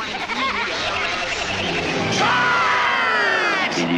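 A loud, dense crowd yelling and cheering, many voices overlapping in a steady roar for about four seconds, with a few higher shouts rising above the mass near the end.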